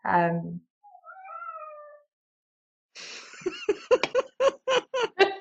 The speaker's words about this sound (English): Was that your cat? That was Paul, yeah. Paul, you can't. I'm going to let him out 1 second, otherwise he's not going to stop me out.